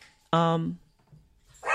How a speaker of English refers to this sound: Sorry, y'all. When you see the video, you won't. When you see the video, you won't have the dogs barking.